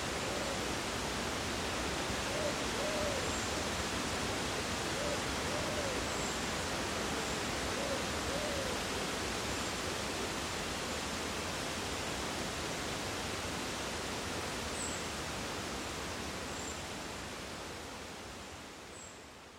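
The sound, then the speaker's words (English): A steady, dense rush of wind through tall trees swaying in the breeze in a forest fills the whole recording, broad and unbroken, easing slightly at the end. Faint, sparse bird chirps surface now and then beneath it. “The sound of these tall trees swaying in the breeze, peppered with quiet birdsong, was the resulting recording, and I'm glad to have moved on from my first planned spot to here, where I captured this.”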